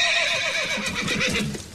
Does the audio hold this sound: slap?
no